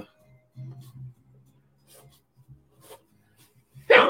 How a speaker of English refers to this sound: excuse me. Bless you.